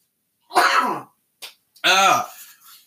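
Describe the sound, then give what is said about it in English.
A sneeze: a breathy, voiced burst, a brief sharp catch of breath, then a second louder, strongly voiced explosive burst that trails off. No speech. “I had to sneeze there for a second.”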